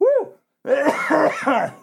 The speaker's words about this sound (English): not a good week for me to be reading all this because this cough has been absolutely horrible.